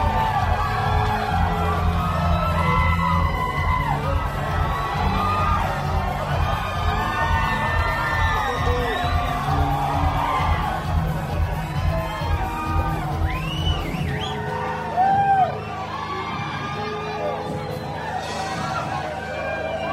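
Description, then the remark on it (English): A large crowd at a live concert yells, whoops and screams continuously over a low rumbling din, the noise dense and loud before dropping off abruptly to a thinner roar of shouting voices near the end. “And then they'd all like start yelling and screaming or laughing or whatever.”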